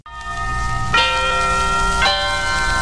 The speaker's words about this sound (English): I see you gave me a lot of chapel bells going on. Where's the wedding?